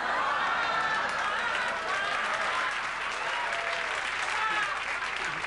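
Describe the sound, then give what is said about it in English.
A crowd breaks into sustained applause, dense and steady clapping at a fairly loud level for several seconds, with a murmur of voices mixed underneath. “He turned an ooh into a clapper.”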